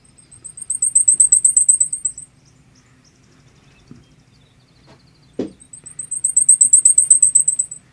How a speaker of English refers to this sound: And we've determined that that one is the black pole warbler. But she would not hear it sing in Mississippi because they pass through pretty quick, don't they?